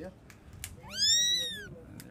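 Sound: kitten meowing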